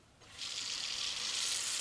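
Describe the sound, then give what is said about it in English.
Water from a tap starts running into a bathroom sink in a tribal office, a steady hissing rush that swells after a quiet moment and stays constant. “So we're filling up the sink in the bathroom here.”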